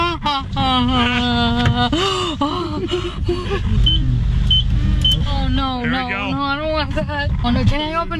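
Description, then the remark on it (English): An automatic car wash rumbles steadily around a car, its low mechanical churn and spray heard from inside the cabin while a mother who fears car washes and her son, who is recording, exclaim and talk loudly over it. “So the son thought it would just be funny to take mom through the car wash and record it, and it was.”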